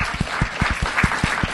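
A live show audience breaks into steady applause for the show's producer, a dense patter of many hands clapping at a moderate level, with a few sharper individual claps standing out in a loose rhythm.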